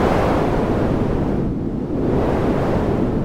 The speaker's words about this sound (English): As you shut the door, you see a wave the size you have never seen before coming from the lake, as if it is almost tsunami-sized. A crushing wave of pain and death. And you see it killing everything outside that is alive.